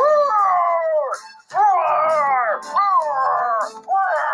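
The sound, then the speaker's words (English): A voice imitates a dragon's roar with long, wavering howls that rise and fall in pitch. Three or four loud bursts follow one another with brief breaks between them. “Yeah, he's got a big deep voice, and he's got a big roar.”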